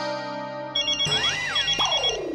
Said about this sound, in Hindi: अब किसका फोन है? वही सर सेम वाइफ का फोन।